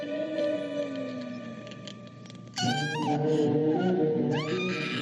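Partway through, a person lets out a loud, high-pitched scream that wavers and slides in pitch, rising again in a second wail near the end, over a low droning background.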